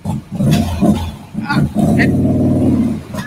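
A loud Harley motorcycle engine rumbles with deep, throaty pulses, then revs into a sustained, steady growl that holds for over a second before easing slightly, as the motorcycle is being moved.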